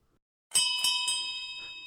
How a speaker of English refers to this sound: Well, I hear the last call bell.